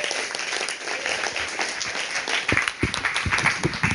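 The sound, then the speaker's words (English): A crowd applauds steadily as a guest speaker comes up to speak, dense overlapping claps forming a continuous wash that grows a little louder and sharper in the second half. “So let's give him a big round of applause as he comes to speak to us.”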